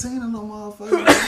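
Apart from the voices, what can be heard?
sneeze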